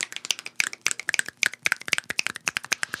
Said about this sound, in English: It's sort of like spoken word when we're doing the show, and suddenly we have random bursts of percussion. Really? Well, people clapping, snapping.